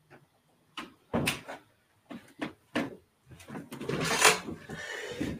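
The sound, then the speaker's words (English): A door is shut and locked: a series of sharp clunks and clicks, followed by a longer stretch of rattling and scraping handling noise. “I will lock the door.”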